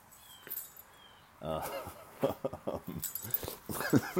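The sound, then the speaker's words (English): An excited female dog jumps up on her owner and licks his face, with wet licking and snuffling, small whimpers, and rustling movement with a faint jangle of tags, in quick irregular bursts. “She just jumped up on me and started licking my face.”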